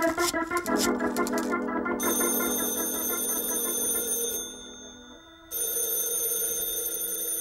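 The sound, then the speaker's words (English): A telephone on a private line rings loudly in a long, shrill burst, falls silent for about a second, then starts ringing again. No one speaks. “Well, try to hold that thought for a moment while I take this call on my private line.”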